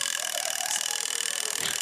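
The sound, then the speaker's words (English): An old rotary phone dial spins back while a phone number is dialed, a steady, rapid ratcheting whir of mechanical clicks, even in loudness for about two seconds, with no voices. “Is that how long it takes to dial one number?”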